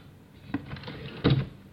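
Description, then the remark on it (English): A second drawer slides open with a brief rattling scrape, ending in a louder wooden thunk as it reaches its stop. No one speaks. “So, nothing in the first drawer. Second drawer.”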